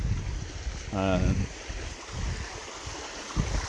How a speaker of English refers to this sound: I'm on a walk, hopefully not too windy. It is windy, so I've kind of sought solace in the glen.